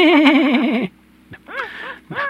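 A horse neighs loudly, a long quavering whinny, followed after a brief pause by two shorter, falling whinnies. No one speaks.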